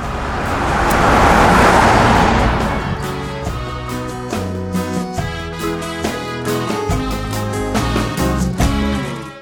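A car passes on a Chicago street outside a small corner eatery at the start with a loud rushing whoosh that swells and fades, then a melodic instrumental tune takes over with steady, stepping notes.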